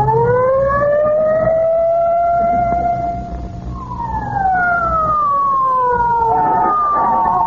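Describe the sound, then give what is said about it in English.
A loud police squad car siren wails, its pitch sweeping up and then sliding back down in long rising-and-falling cycles over a low engine rumble as the car speeds away, continuous with no talking. “Get in the squad car.”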